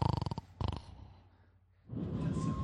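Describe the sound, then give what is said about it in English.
Someone imitates a snore: two short, rattling, fluttering snorts, a brief hush, then a rough, breathy rush of air. “Wow, that's a good snore noise.”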